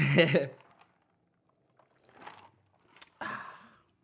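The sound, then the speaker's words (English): A quick sip of cognac: a few short, soft slurping and breathy bursts separated by quiet gaps, with a brief sharp glassy tap near the end. “Listen, before we start, we gotta take this little quick drink.”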